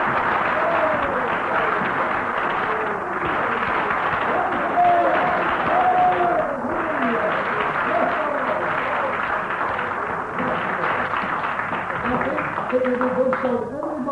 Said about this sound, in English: Shall we all give Jesus a hearty clap for being with us?